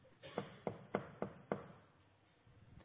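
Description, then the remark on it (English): Five firm knocks on a door in a steady, evenly spaced rhythm, each a sharp thud, followed by a quiet stretch with no voices. “It's the knock of Jesus Christ on your heart today.”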